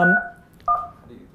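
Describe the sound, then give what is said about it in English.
Two short touch-tone keypad beeps from a phone being dialed, the first at the start and the second about half a second later, each clear and steady with a brief gap between. “So, while there's downtime, make that lower while you're dialing.”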